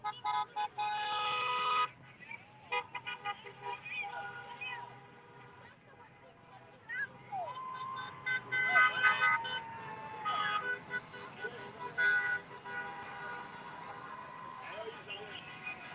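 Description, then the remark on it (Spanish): Many car horns from a car caravan in Doral, Florida honk over one another in long, overlapping blasts, swelling in bursts at the start and again midway, amid steady traffic rumble and indistinct voices. “Mother of All Car Caravans in Doral, Florida”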